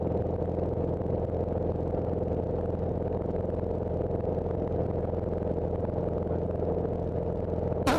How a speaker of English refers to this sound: I'm flying an airplane.